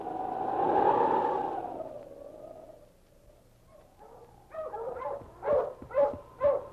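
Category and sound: animal, husky dog barking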